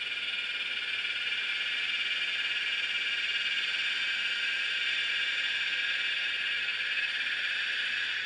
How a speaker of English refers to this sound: It's in a symphony of cicadas.